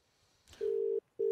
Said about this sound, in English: So we'll just give him a call straight off the bat here and see how we go, eh? No notice. Let's just ring him.